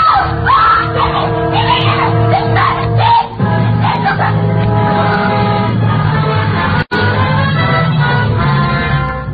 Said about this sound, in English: And then she reached over and put her hand on his back. And suddenly she was screaming.